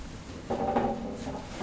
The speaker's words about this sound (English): grabbing the chair.